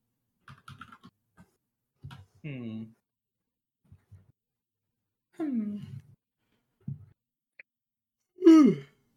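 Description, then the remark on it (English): A few soft, breathy vocal groans build to one loud, drawn-out yawn near the end, with light clicks and taps scattered in the quiet gaps between them. “I yawned.”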